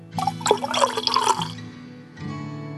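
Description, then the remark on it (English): Foley liquid pours out and splashes in a burbling stream for about a second and a half, with bright gurgling bubbles, then stops before a low hum returns. Fairly loud, with no voices. “Just going to pour one out. For soft click technology.”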